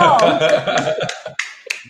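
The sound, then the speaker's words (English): About six sharp hand claps at a steady, unhurried pace, with a voice heard underneath during the first half before the claps continue more on their own. “I'm clapping because I've been trying to say this to dudes on here for so long.”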